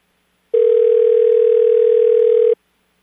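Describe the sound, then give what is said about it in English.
A single steady electronic ring tone from a phone line sounds for about two seconds while a call is being placed, clear, then cuts off into silence with no voices. “Let's see if we can get her on the phone.”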